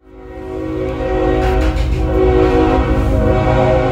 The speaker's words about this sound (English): There's this train called La Bestia that runs from the south end of Mexico all the way to the north. And that train passes through my grandma's house at any hour at night.